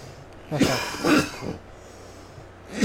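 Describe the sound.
A person fakes a cough, imitating a man at a press conference: two harsh bursts followed by a softer third, then quiet breathy noise. No words are spoken.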